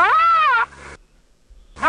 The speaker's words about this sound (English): Here's a rhino.